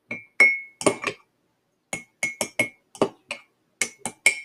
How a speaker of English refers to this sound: What I'm going to do is what I'm doing is like I'm taking the food processed tahini in the bowl and I am pouring chickpeas in the bowl and I'm pouring the tahini in. It's 2 teaspoons of tahini.